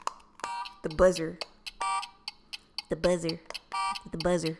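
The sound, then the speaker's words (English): A harsh game show buzzer blares in several short, loud bursts, alternating with brief vocal sounds in between. “The buzzer.”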